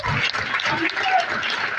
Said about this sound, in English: Only Christians are clapping. If you are not clapping, I suspect you.